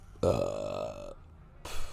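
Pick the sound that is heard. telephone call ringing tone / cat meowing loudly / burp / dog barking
burp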